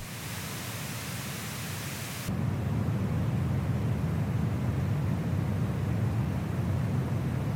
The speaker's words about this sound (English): And then we have brown noise, which is even further down to the low-end frequencies, and to me, sounds more like waves on the shore. Listen for the change again.